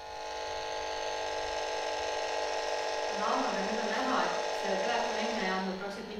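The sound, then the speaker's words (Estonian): A steady, harsh, jagged electrical buzz from phone charging interference picked up by a meter, rich in whiny overtones, drones throughout at an even level; partway through, a muffled voice murmurs underneath it. “Aga ta jätab enda tahal järgi tohutu sellise sakilise müra.”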